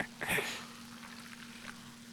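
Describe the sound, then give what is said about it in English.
A short burst of hissing near the start as a bottle of carbonated drink is opened, then a soft, steady crackle of fizz, quiet, with a low electrical hum underneath. “I'm going to open this now. Oh, a little fizzle.”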